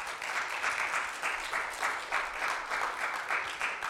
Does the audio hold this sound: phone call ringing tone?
no